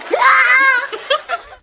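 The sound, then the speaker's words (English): A loud, shrill child's scream sound effect rises and holds for most of a second, followed by a few short, sputtering bursts of a goat farting, then quiet. There is no talking. “Yeah, so I decided that I'm going to play a goat farting and a child screaming.”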